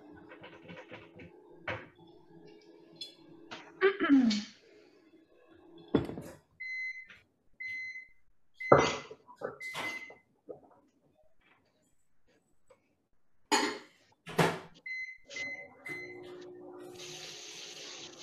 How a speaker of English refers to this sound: So microwave it is.